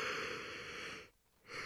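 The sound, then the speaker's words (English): A drawn-out, breathy yawn, a long airy inhale that breaks off briefly before a second rush of breath. No talking. “I'm not going to edit that yawn out.”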